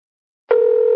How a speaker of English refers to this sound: I'm going to put her on speakerphone. Okay, it's ringing.